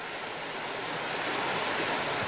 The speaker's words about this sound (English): Big trains no longer chug along the rails of Corcona. People here now rely on hand cars for transport on these tracks, crossing over what used to be an ordinary river.